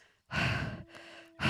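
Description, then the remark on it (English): An exhausted man lying on the front steps of a house pants heavily, with no talking: a long, loud, rasping exhale, a softer drawn-in breath, then the next forceful exhale beginning. “Ted lay on their front steps panting.”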